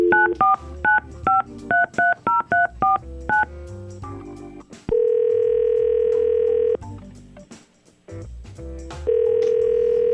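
A rapid series of touch-tone dialing beeps, about a dozen quick tones, followed by two long steady ringing tones on the line, clear and close with no talking.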